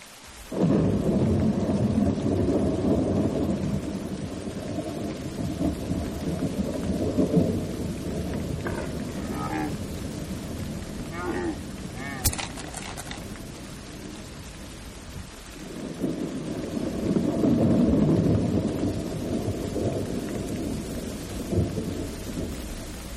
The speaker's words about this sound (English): The rain has come down from above for many days. So many. I've lost count. It did stop once, just long enough for the city to take a breath before being plunged into the waters once again.